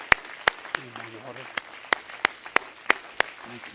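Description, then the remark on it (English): An audience claps hands together to the Lord in a steady rhythm, about ten sharp, loud claps landing evenly, while a voice murmurs faintly underneath. “Everybody clap your hands to the Lord for a moment.”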